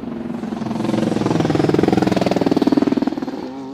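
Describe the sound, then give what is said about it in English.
An Acura LMDH prototype race car engine chatters and crackles as it lets off the throttle through a corner, a rapid staccato burble that swells louder as it passes by, then begins to fade. “At night, you can tell the Peugeot LMH car is coming by its headlights, and you'll hear the distinct sound of the Acura LMDH car as it lets off the throttle and the engine chatters through a corner.”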